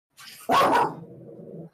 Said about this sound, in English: I think your dog strongly disagrees with me.